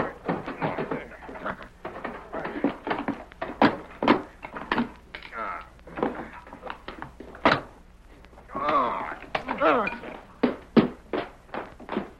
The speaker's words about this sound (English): Hey, let me get this bar in the lock. I'll pry it open.